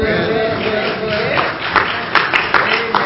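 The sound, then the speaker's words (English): Scattered, half-hearted hand clapping of praise to the Lord from a church audience, a few sharp claps standing out over a murmuring crowd rather than full applause. “Maybe y'all stayed up too late, but you know, that wasn't that great of a hand clap of praise.”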